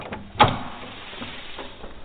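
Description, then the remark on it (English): A sharp metallic clack near the start as the front door lock releases, followed by a soft scraping rumble as the front door swings open, with no one speaking. “Doors unlocked.”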